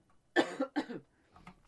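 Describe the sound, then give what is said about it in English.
Two quick, harsh coughs from a person with a slightly sore throat after sipping tea, one right after the other, followed by a faint, muffled throat sound as things settle. No talking. “I'll turn my microphone off and cough.”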